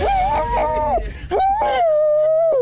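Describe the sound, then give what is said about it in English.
A dog sings in drawn-out, wavering howls: one rising and falling tone, a brief break, then a long steady note that slowly sinks in pitch, fairly loud and with no talking. “Okay, that was a fail with the singing dog.”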